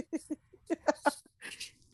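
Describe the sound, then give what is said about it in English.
A small dog named Cupcake lets out a quick run of short, sharp yaps, the barks coming in two uneven bursts before trailing into a higher, breathy whine. “No barking. That's okay.”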